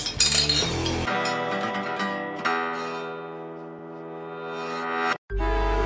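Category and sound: household object, glasses clinking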